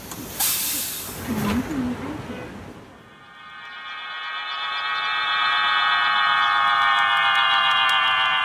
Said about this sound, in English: It's the noise of pigeon whistles.